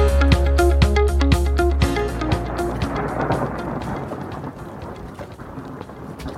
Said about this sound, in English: Oh, wow. Well, as you can hear, it's quite a big storm raging outside. I'm up at the cottage this week.